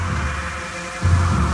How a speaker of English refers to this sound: What's that humming noise?